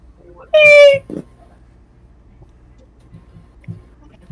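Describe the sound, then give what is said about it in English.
A cat lets out one loud meow, a drawn-out, slightly falling cry of about half a second, followed by near-quiet with a few faint low bumps. “Alright, cat's upside down.”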